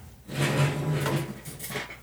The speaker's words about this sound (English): You just threw your d20 across the room. It hit this little plastic chunk and it went flink.